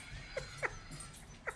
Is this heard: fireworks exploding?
no